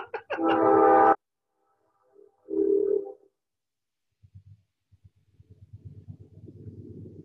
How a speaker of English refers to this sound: Is that a train? Yes, there's a train coming by. So I'm gonna use this as a marking point. I'm gonna have to edit out the train, obviously.